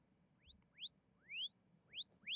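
A series of five quick rising electronic chirps from an item tracker triggered with the find function of a phone app, each sweeping upward in pitch like a short whistle, repeating at irregular intervals with no talking.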